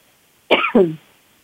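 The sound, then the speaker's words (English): A single cough in two quick bursts, loud and sharp against near silence, lasting about half a second before fading out. “I did cough.”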